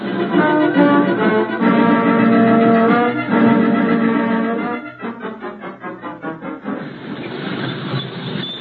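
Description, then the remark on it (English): A streetcar grinds to a stop at a street corner with loud, sustained metallic squealing and layered tonal screeches, then a rhythmic series of clanking, juddering pulses as it slows, ending in a rough rumbling hiss. “Streetcar grinds to a stop at the corner.”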